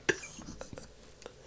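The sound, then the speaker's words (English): A person imitates Helen Keller sniffing with a handful of short, breathy nasal bursts at uneven intervals, with no other talking. “She is sniffing.”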